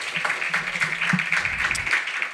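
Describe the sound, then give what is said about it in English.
An audience at a reading event applauds a reader: a dense, steady wash of many hands clapping that holds at an even level for the whole couple of seconds, with no one talking over it. “Give Hendry another round of applause.”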